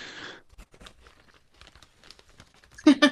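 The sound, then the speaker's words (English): A crisp, loud crunch of someone biting into a fried pizza roll, followed by softer crackly chewing and rustling, then a sharp double crunch at the end. “That's what I'm talking about. That's a good crunch.”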